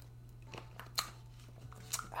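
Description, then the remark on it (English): Someone takes a quiet sip of Zephyrhills bottled water from a plastic bottle, with a few soft clicks and crinkles spaced out over a low, steady background hum. Nobody speaks. “I'm going to grab a little sip of my beverage here, this Zephyr Hills water.”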